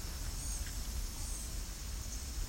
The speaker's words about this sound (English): So we're entering the Vine Mount Swamp. We've got sounds like blue-gray gnatcatchers. Yep. You do this high-pitched call that sounds like bees, bees, bees.